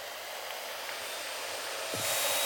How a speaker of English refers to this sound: When I turn on the saw, check this out, the Hoover comes on automatically.